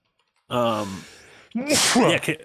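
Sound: sneeze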